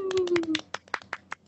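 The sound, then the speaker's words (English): A quick run of light 'tea time' hand claps celebrating the announcement of a new co-host, roughly a dozen soft, evenly spaced pats, with a brief voice sounding over the first few before the claps continue alone. “Get a little tea time clap.”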